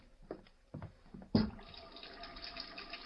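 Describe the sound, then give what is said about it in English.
A few clicks and clunks, then a tap gushes on and hot water runs steadily into a sink, a continuous splashing hiss that carries on to the end. “there's a sink over there, Kent. Maybe I'll see.”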